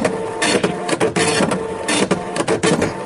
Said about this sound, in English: I can't hear you over the printer. Hang on a second.